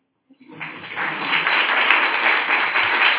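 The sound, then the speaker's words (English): A small audience breaks into applause, a dense patter of many hands clapping that swells within half a second and holds steady, moderately loud, for about three seconds with no voices. “I'd like a small applause.”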